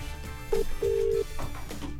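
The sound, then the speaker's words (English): A phone line's ringback tone sounds as an outgoing call connects: a short steady beep followed by a longer one, fairly clear over a low background hum, with no one talking. “Oh, it's ringing.”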